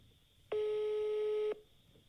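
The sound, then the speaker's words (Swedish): A telephone ringing tone sounds once as a steady electronic beep lasting about a second, loud and clear over a faint background hiss, with no one speaking. “Fan, svara telefonjäveln.”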